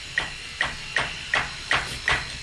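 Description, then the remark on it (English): A small child bangs on a stair gate at the top of the stairs, trying to open it: six sharp, evenly spaced metallic knocks, each with a brief ringing tone, repeating steadily with no voices. “Wow, and that's him hitting the gate at the top of the stairs. He's just trying to open the stair gate.”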